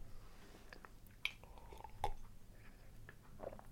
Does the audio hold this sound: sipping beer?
yes